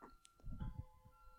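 A faint, tinny chime from a clock that plays a different song every hour on the hour, a few sustained melodic notes, with soft low thumps and rumbling underneath and no talking.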